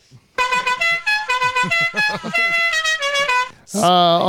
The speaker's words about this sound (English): All of the Mexicans are out front of the Dutch Hall right now, and they're low riders honking their horns, right? big celebrations to celebrate Cinco de Mayo.